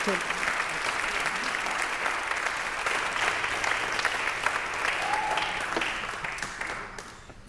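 A crowd applauds steadily, a dense wash of many hands clapping at an even loudness that holds throughout, with a few faint whistles or cheers mixed in before the clapping thins out at the end.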